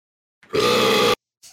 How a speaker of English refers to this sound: Holy hell. My bro had that one cooking. Like fucking crazy, dude. He's got some low end in his burp.